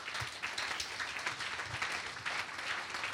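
An audience claps together in a dense, steady wash of applause, many hands blending into a continuous crackle that holds at an even, fairly loud level throughout.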